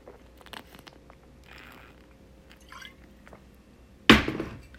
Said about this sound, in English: Chugging a bottle of wine is not a normal thing to do. You take a glass of bottle of wine. Ugh. Chugging wine, God, it tastes like dirty dicks. Like sour fucking asshole.